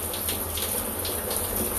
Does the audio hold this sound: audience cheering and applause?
no